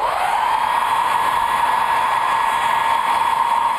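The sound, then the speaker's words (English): A blow dryer runs steadily, a continuous loud whirring hiss with a faint motor whine, unchanging throughout with no voices. “Blow dryer.”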